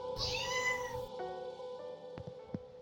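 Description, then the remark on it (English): A cat lets out one long, whining meow, bending in pitch for about a second, then fades into quiet room noise with a couple of soft clicks. “Yes, Daddy, I know that I'm a silly little baby, but I am also a silly little kitty.”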